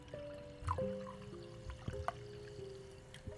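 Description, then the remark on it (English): Someone drinking a cup of cold water first thing in the morning: quiet liquid trickling and sloshing with a few soft clinks and gulps, fairly faint, with no talking. “Drinking a cold cup of water, first thing, very bracing.”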